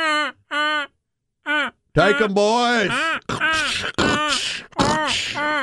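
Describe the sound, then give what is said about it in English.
A man imitates a goose call with three short, nasal honks, two quick ones then a third after a pause, followed by a loud shouted line of speech. “Sound like a goose?”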